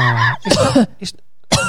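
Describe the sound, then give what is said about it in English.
A single deliberate, forceful cough with a voiced, throaty onset and a rough burst of breath, followed by a short pause and a brief intake or sound at the end. “I don't get, like, in a brothel, going, could you cough on my dick?”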